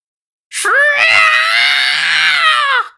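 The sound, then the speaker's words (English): A single loud, high-pitched, slithering creature scream rings out, shrill and sustained for over two seconds before cutting off abruptly, with no talking around it. “He screamed in his slithering, high-pitched Texan voice.”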